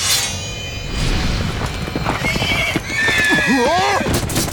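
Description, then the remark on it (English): A horse rears back in surprise and lets out a loud, shrill whinny with wavering, sliding pitch, throwing its rider from the saddle, over a busy background of rumbling and scattered hoof thuds. “Lot's horse reared back in surprise, throwing the king from his saddle.”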